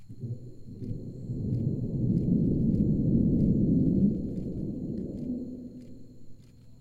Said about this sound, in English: We got about 3 seconds in before it scrubbed, and that included actually igniting the engines. So if you want to know what the scrub sounds like in a brief Delta IV engine fire, take a listen.